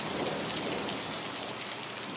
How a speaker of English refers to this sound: All of a sudden, it starts to rain. In Bogota, when it rains, it pours. That day was one of the biggest rainstorms Bogota had ever seen.